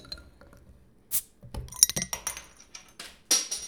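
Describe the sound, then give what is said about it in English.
A bottle of light lager beer is opened: a brief hissing burst, then a cluster of bright glassy clinks and rattles, followed by another short fizzy rush near the end. No one speaks. “I'm actually going to open it right now.”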